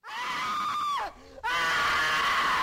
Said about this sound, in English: At the end of Castle's lecture, we see audience members' faces emerge from the screen, shrieking in terror.